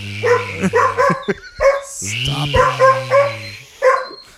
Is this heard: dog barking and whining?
yes